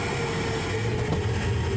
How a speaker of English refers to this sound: We got to open the pneumatic tube. Quick, open the tube. Okay, here we go.